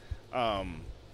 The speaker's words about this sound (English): Ooh, he had to clear his throat.